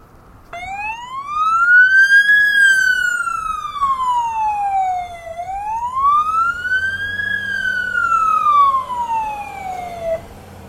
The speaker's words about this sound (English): We've got emergency vehicles. I guess it's police. And it's going to get really loud in a moment.